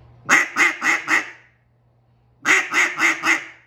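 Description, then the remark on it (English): Two quick bursts of four short, raspy duck-call quacks each, loud, separated by a brief pause, with a faint low hum underneath; a hunter calling to approaching ducks. “Hit them with a couple little notes as they hit that side.”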